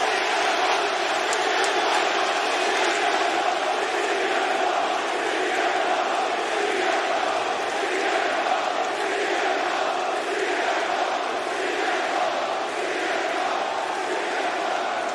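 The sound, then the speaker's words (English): A huge arena crowd of wrestling fans at the United Center in Chicago, Illinois, roars and cheers continuously, a dense wall of voices that stays loud and steady the whole time with no one speaking over it. “Those crowds, that those fans are unglued, man.”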